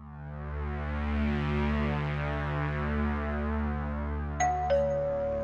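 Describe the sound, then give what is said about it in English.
A sustained, droning musical tone plays throughout. Near the end, a doorbell chimes a quick two-note ding-dong that rings out clearly over the music. “The bell rang, and Winnie opened the heavy oak door.”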